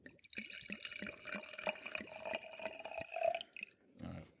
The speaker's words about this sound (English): So, let me get the wines into your cups now.